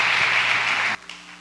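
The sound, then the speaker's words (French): The RVC church audience applauds to welcome Pastor Guy François before his sermon, a dense, steady burst of clapping for about a second, then it cuts off abruptly, leaving a faint low hum. “Nous avons demandé que RVC soit capable d'applaudir pasteur Guy.”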